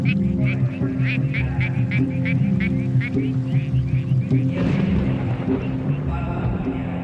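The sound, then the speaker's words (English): Frogs call at the water's edge in a quick, steady series of clear croaks over a constant low background hum. The croaking stops partway through and the hum continues. “But if we hear the frogs, we know that water is fresh to drink.”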